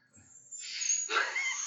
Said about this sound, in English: We're all trying to whistle and it's not working.